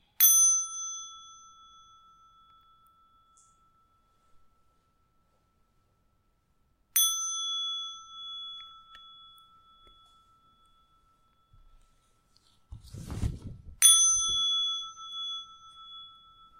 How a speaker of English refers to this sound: And when I ring the bell, please come out of the meditation and you can relax the body.